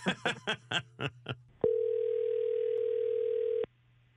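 A few quick choppy bursts, then a loud, steady telephone tone hums for about two seconds before cutting off abruptly, like a phone line ringing out, as Mix 94.7 radio hosts place a call for their on-air segment Waiting by the Phone.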